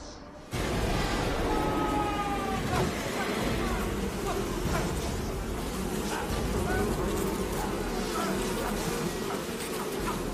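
A dense swarm of flies buzzes loudly and continuously, starting abruptly and filling the air with a thick, droning hum of many wings, with no pauses throughout.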